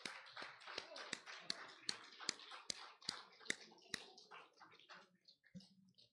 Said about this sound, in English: Well, let's give the Lord one more hand clap of praise.